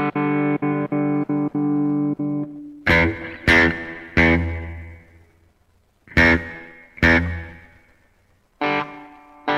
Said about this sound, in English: One of the most important things about a … sound is that cool surf reverb, and we have one in here.